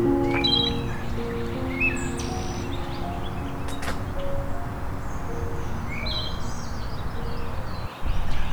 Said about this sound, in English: have a wood thrush.